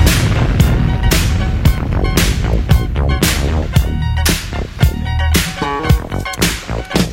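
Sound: explosions sound effect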